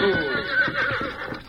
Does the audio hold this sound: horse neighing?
yes